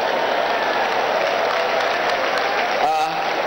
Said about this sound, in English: No, you are only clapping. You are not telling me you're okay.